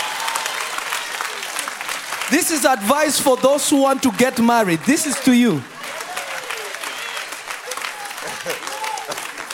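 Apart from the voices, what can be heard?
audience clapping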